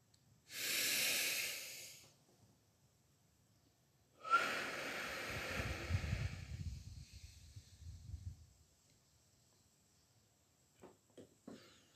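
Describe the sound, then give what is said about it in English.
A hissy inhale through the nose lasting about a second and a half during a guided breathing exercise, a short pause, then a longer, breathy exhale through the mouth with a soft, rumbling airflow, ending in quiet. “So take a deep breath in through the nose for clarity, for purity. And breathe out all of those toxins, those toxic emotions.”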